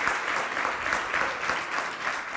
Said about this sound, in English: Give God a hand clap.